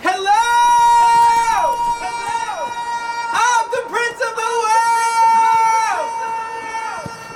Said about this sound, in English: Pretty neat, huh? That's called an echo. I invented it.